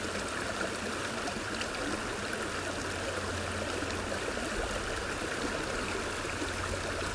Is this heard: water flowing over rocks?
yes